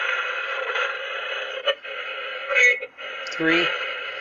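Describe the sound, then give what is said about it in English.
Continuous band-limited radio static from a spirit box sweeping across channels, with brief choppy bursts and fragments of garbled broadcast sound flickering through as the scan jumps from station to station. “And I got the spirit box too.”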